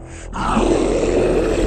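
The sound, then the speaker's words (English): A monster's deep, rumbling roar bursts in after a brief breath-like rasp and holds loud and sustained for over a second, a growling, throaty bellow with no talking. “Now, all the exits are blocked. None of the doors will open, and the creature... Come on, you stupid thing! The creature will not be stopped!”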